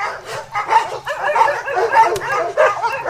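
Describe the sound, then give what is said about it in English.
A pack of sled dogs ashore yips, barks and whimpers in a steady stream of overlapping, high-pitched, loud cries, with no talking. “We looked after the dogs ashore.”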